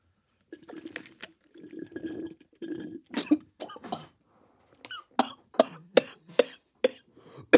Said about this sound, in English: Oh, a little fart came out, too. Sexy. Are you okay? Yeah, it's just a big straw.